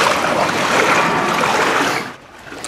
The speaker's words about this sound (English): Residents and tourists strapped on rubber boots to slosh through flooded streets as the water level peaked at about 1.3 meters this morning. The high water is running into cafes and stores in the tourist mecca of St. Mark's Square.